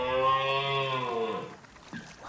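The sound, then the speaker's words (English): A single long, low moaning call from a huge moose in the bush close to the shore, rich and droning. It holds steady for over a second before its pitch sags and fades, followed by a few faint scattered sounds. “In the bush close to the shore. It's a moose.”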